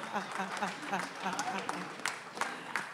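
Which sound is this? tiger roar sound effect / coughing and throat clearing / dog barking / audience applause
audience applause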